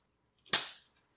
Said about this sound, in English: Yes, clap. My favorite use of claps is to synchronize audio between two microphones that aren't plugged into the same, you know, mixing board.